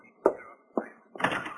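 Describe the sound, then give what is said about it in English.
A door is opened: two sharp knocks of the latch or handle, then a brief scraping swing as it comes open, with no voices. “Just take one more look out of the door.”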